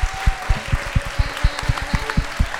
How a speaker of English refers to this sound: Please give a massive round of applause to our guests